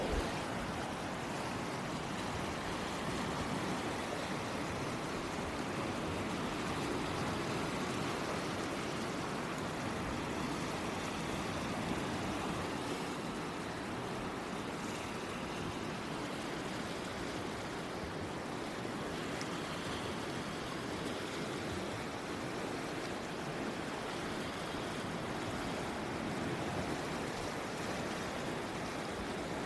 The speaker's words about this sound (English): So I'm just going to let you experience it for a little bit along with me. And hopefully my phone is able to sort of capture some of the wave sounds. But here we go for just a little bit of tranquility.